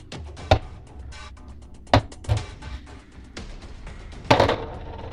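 Dice clatter across a hard tabletop in a few separate throws during a tabletop role-playing game, each a sharp clack followed by brief rattling taps, distinct with quiet pauses between them; one throw shows two sixes.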